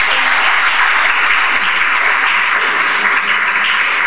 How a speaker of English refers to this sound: Can we get a round of applause for them for just coming up here tonight?